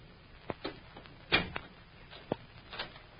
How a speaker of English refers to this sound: Hey, what do you mean by locking the door?